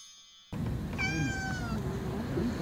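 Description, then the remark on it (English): A single drawn-out, plaintive meow from Mega Kitty, a cat that is not feeling well and threw up on the rug, fairly loud, rising then trailing off over a steady low background rumble, with no talking. “Oh no, Mega Kitty is not feeling well. Threw up all over the rug.”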